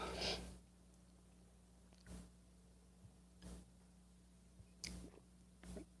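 Sips of coffee from a mug: five short, wet slurps spaced a second or so apart, with quiet pauses and a steady low hum underneath.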